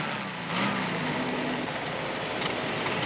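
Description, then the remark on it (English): A Volkswagen car's engine hums steadily over a broad wash of road noise as it comes in, turns and drives away, with a low motor tone rising briefly, heard in a TV advertisement. No one speaks. “You hear this wonderful sound of the Volkswagen coming in. And it turns and it goes away.”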